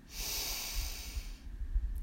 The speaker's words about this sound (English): We begin by taking 3 deep breaths from the bottom of our belly. We breathe in and out with a loud sigh. Breathe in